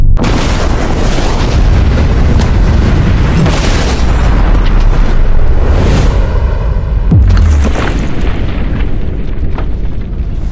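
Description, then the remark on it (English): A massive detonation of explosives packed around a safe erupts in a deep, sustained roar, followed by a long rumbling wash of booming low-end noise and crackling debris, loud and continuous for several seconds with no voices; the blast blows off the back of the safe and cracks the floor. “This safe is now surrounded by $100,000 in explosives.”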